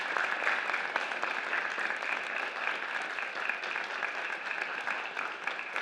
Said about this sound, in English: And we applaud you. In fact, let's applaud you now. We applaud you for what you have done.